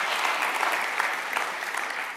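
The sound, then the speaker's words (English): A crowd applauds steadily for a woman hailed as a great woman of God, a dense wash of many hands clapping at an even, fairly loud level with no pauses, and nobody speaks over it. “Give it up for a great woman of God.”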